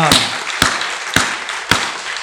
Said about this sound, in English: we're going to clap for you